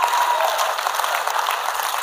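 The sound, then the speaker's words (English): A crowd claps steadily together during worship, a dense, continuous wash of applause with no pauses, loud and sustained throughout, with no voices standing out. “Don't stop worshiping. Don't stop clapping.”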